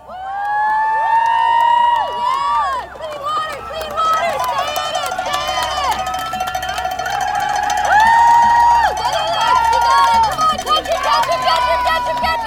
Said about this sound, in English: The start gun fired. 108 boats charged forward through the water. Crowds cheered on the bank.